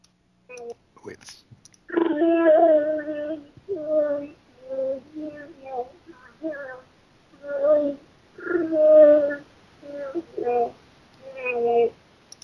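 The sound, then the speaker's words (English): A person imitates a Wookiee roar as a contest entry: a string of warbling, throaty howls and groans in uneven bursts, fairly loud, after a few quick clicks at the start. “Wookiee Roar Contest Round 2!”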